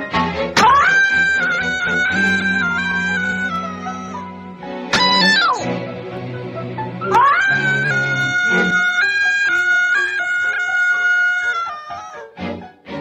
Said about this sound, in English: The scream was then recorded and reused again and again in every episode.